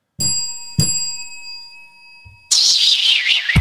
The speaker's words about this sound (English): Who rang that bell?